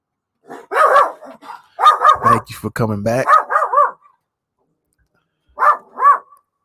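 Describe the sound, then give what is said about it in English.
A dog outside barks repeatedly in quick, fairly loud bursts, apparently hearing something, a man's voice briefly mixed in, then after a short pause two more sharp barks. “As my dog is out here, must be apparently hearing some things.”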